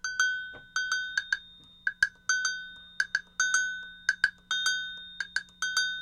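Homemade percussion with a curved joint of old PVC pipe as its base, a broken bell and a jam block, played in a brisk, syncopated groove: sharp, ringing metallic clanks with short decays, repeated in quick clusters, with no talking.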